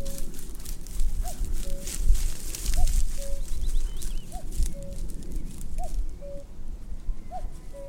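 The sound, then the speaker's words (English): A common cuckoo calls its two-note cuck-oo over and over in a steady rhythm, clear, over a continuous low rumble and rustle with faint birdsong higher up. “So that's the second cuckoo I've heard this year.”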